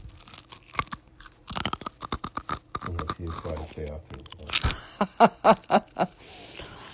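ASMR-style crunchy chewing right up against the microphone: loud, wet bites and crackles in quick rhythmic bursts, with brief pauses between them and soft breathy sounds in the background.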